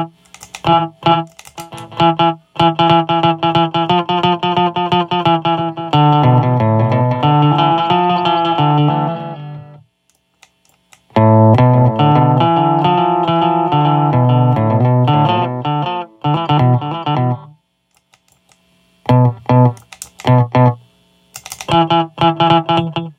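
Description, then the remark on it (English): Electric guitar notes and chords played through a short slapback delay, each attack followed by a quick single echo, with bright sustained tones, pauses, and percussive clicks between phrases. “You can hear that we have a nice slap back.”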